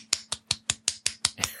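one person clapping hands

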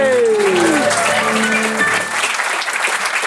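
round of applause

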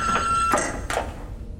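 elevator doors opening

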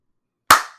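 single hand clap

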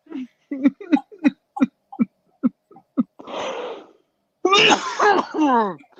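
coughing and throat clearing

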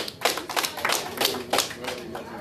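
hand clapping

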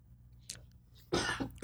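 sneeze

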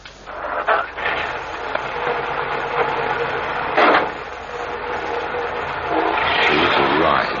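car engine running

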